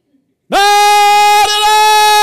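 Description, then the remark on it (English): A voice imitates the 5 a.m. call to prayer from village loudspeakers in Africa: after a short silence, one loud, sustained, nasal wailing note that holds steady with a brief waver partway through. “We were woken up every morning by a call to prayer at 5 o'clock.”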